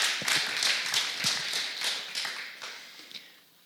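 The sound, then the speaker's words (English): A crowd gives a round of applause for some ladies, dense overlapping claps forming a steady patter that stays strong for a few seconds before gradually thinning and fading out, with no voices over it. “Let's give these ladies a round of applause.”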